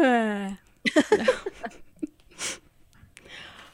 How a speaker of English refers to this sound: yawns.